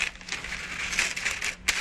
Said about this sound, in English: And I cannot cut this paper to save my life. There we go.